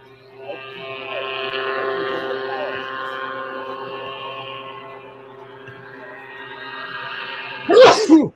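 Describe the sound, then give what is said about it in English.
A low, steady motor-like hum drones for several seconds, then one sudden, loud sneeze bursts out right at the end. “Bless you.”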